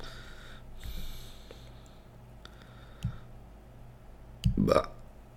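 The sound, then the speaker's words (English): A single abrupt sneeze bursts out near the end, loud, breathy and sharp, after a few seconds of low background hum broken by a couple of faint clicks and soft thumps. “Bless you.”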